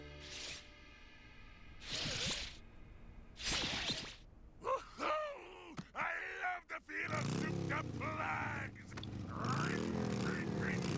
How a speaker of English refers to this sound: Yeah, except when he's revved it up there, he also moved the brake.